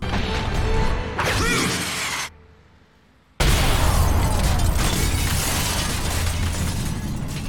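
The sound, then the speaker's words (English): A loud explosive impact with shattering glass and crashing debris, a brief near-silent gap, then a sustained roar of crashing and rumbling to the end; made by a man punching the bottom half of an egg on a string, used for a punch blowing out the windows of a gym floor. “Just a reminder, this is the audio of a man punching the bottom half of an egg on a string.”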